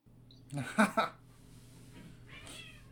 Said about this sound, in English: My cats are fighting. Cats are going crazy.